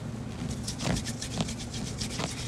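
A homemade stylus made of slime taps and rubs against a phone screen as someone types with it, in a quick, uneven series of soft, scratchy clicks over a low steady hum, with no talking.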